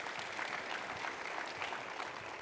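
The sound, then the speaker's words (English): A light smattering of clapping from a small group, a steady patter of hand claps holding an even level throughout, with no voices over it. “There's a couple of smattering of clapping there.”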